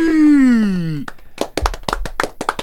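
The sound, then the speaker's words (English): A drawn-out falling vocal whoop gives way to scattered, uneven hand claps, sharp and fairly loud, popping irregularly for a couple of seconds with a few voices mixed in, as a guest is welcomed. “Hold your applause for”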